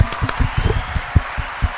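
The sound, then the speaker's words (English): A small group claps together for a guest for a couple of seconds, the claps fast and irregular, overlapping into a scattered, moderately loud patter with no voices. “Let's clap it up for Ari one more time.”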